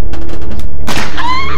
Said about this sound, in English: Ah, you shot me! It isn't a real bullet. Oh, wait. Yes. Yes, it is.